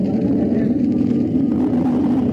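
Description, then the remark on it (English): A U.S. Air Force Northrop F-89D Scorpion jet fighter's engine roars as the pilot prepares to take off, a loud, steady, unbroken drone, low and rumbling, holding constant for a couple of seconds with no voices over it. “It's the roar of the Scorpion as he prepares to take it up.”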